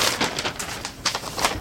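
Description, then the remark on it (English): Scissors roughly chop through a Sunday newspaper in a quick, uneven series of crisp, papery snips and rustles, fairly steady in loudness, with no voices. “In this case, since I'm using the Sunday paper and don't plan to use this for anything else, I'm just cutting it rather ragtag.”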